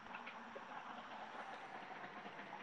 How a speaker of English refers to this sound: Do I hear rain? Well, I was hoping that wouldn't be heard because this is supposed to be a noise-canceling device, but there is some cars, some traffic on the road. You're hearing tires on pavement.